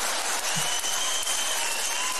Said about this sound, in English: And the only reason y'all clap is because your woman sitting next to you right now when I ask you.